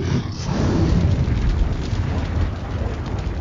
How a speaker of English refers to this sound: The sky turns red and you hear a loud roar in the distance. Dragons!